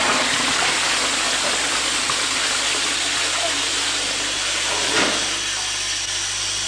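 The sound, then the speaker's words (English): A steady, loud hiss of escaping steam or air from a leaking pipe runs unbroken throughout, with a low hum beneath it and a brief soft knock near the end. “Oh, there's a leak somewhere. Must be a leak in the system.”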